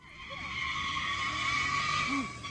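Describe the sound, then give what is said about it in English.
A car's tires squeal continuously, a loud, sustained high-pitched screech over a steady engine roar that barely varies, the wheels spinning in place as the car, locked together with a bus, has its passed-out driver's foot on the gas. “The driver of the car... sadly, had passed out with his foot on the gas.”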